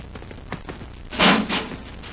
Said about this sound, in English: There's a metal door, Hap. Let's see if we can open it. Hey, an airlock. Get in and close the door, Hap.